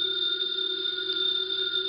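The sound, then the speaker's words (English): A house phone rings steadily for the whole stretch, a bright continuous electronic trill at moderate volume with no pause, heard on its own without voices. “The phone is ringing. Let it ring.”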